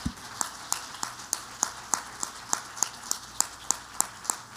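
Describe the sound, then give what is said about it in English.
An audience claps hands together in praise to the Lord in a steady, even rhythm, the sharp claps landing about three times a second, with no talking. “Would you clap your hands unto the Lord and give him praise right now?”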